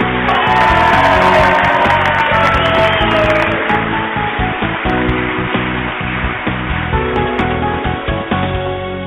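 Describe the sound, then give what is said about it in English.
A studio audience, along with four poodles, cheers loudly and steadily on the Boze Noze Show, live from Lane County, Oregon: a dense wash of clapping, whoops and shouts that holds strong throughout before easing slightly toward the end. “And the four poodles are cheering madly along with the studio audience.”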